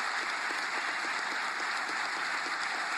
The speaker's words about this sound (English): Listen to this applause of the governor standing for those with special needs and the unborn. Listen. Listen.